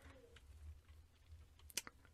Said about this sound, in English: What were you typing, bro?